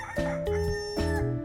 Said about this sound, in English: First, kill the neighbor's rooster.